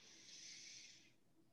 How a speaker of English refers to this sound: So just slow down your heart rate. So take a deep breath in.